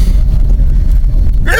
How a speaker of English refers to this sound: Like 100 sneezes and coughs at the same time in a row. That's. That was for you, dear listener. Ugh. That was authenticity right there.